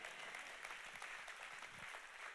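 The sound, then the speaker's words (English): A church audience claps their hands together during a sermon in a steady wash of applause. Many overlapping claps blend into a dense, continuous sound that fills the room for a couple of seconds. “Come on, clap your hands and say a good amen.”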